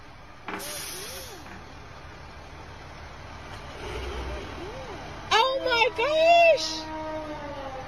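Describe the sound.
A fire truck drives past a little boy in front of his house, with a steady engine rumble and a sharp hiss of air brakes, while excited voices shout and squeal, growing loudest near the end.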